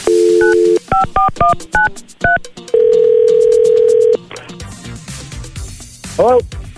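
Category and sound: signal or alarm, telephone call being dialed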